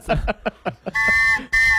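After a few short voice-like bursts, a whistle is blown in two long, loud, steady blasts, the second following right after a brief pause, both with a shrill, piercing tone.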